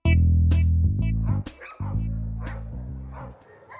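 Dogs bark in loud, regular bursts about once a second, with a sustained whining, yelping tone beneath, fading slightly toward the end.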